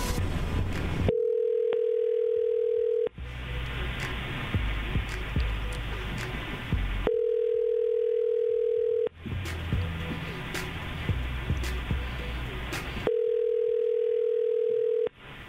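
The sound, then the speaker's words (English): An outgoing phone call ringing on the other end: three steady two-second ringback tones at regular intervals, with a rough, noisy phone line filling the gaps between rings. “All right, hang on. Let's give her a call.”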